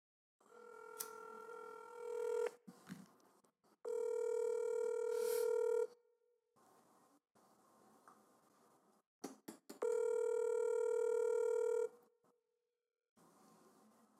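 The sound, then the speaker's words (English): A phone's outgoing call ringback tone sounds three times, each steady buzzing tone lasting about two seconds with quieter pauses between, clear with no talking over it. “He's going through his phone. Call.”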